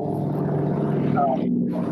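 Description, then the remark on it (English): A motorcycle passes outside, its steady, rumbling engine drone filling the whole two seconds with a loud, buzzy low hum and a faint rising whine toward the end. “What was that? Motorcycle. Outside? Yeah. This is hog country, bro.”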